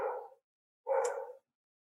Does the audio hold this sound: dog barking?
yes